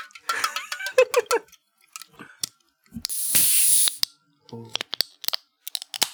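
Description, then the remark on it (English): The plastic cap of a 24-ounce bottle of Faygo cotton candy soda twists open with a few crinkly clicks, followed by a sharp burst of fizzing hiss lasting under a second, then more scattered clicks and handling noises. “Let's crack this open.”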